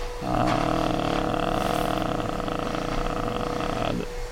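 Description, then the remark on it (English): A vacuum cleaner drones steadily for about four seconds, a loud, sustained motor hum with a buzzing whine, starting and stopping cleanly with no voices over it. “It's hard here with this Hoover going on.”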